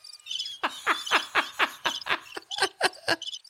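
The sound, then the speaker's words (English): A quick series of about a dozen sharp, high cricket chirps played as a sound effect from a soundboard, in a steady pulsing rhythm, fairly loud, with faint trilling in the background and no talking. “We have this new board, and I forgot I had sound. That's what you got was crickets.”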